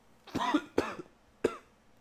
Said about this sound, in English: Hold on, I got a cough.